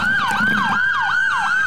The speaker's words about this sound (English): It was just after midnight, and we could hear the sirens, but we couldn't tell where it's they were.